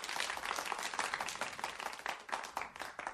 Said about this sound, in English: Oh, there you go. Kind of a golf clap, actually.